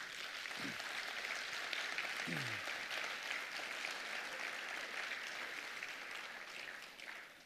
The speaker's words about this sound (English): You guys have given an incredible gift. Yes, you can definitely applaud.